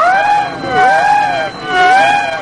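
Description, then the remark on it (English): A submarine collision alarm wails on its own as a ship turns in to try to ram the submarine. It is a loud harmonic tone that sweeps down and back up in pitch twice in steady cycles, like a whooping siren. “Sound the collision alarm.”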